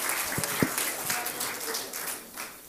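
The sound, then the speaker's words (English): An audience at Hatchbend Apostolic Church claps their hands to the Lord in a dense, steady wash of applause with a few sharper individual claps standing out, holding at a fairly even level with no voices. “One more time, would you clap your hands to the Lord and thank Him for what we've already felt here today?”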